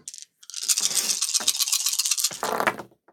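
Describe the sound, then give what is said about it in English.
Two dice rattle and clatter across a hard surface in a dense, busy run of sharp clicks lasting a couple of seconds, ending with a few last taps. No one speaks. “No, not too bad for 2 dice.”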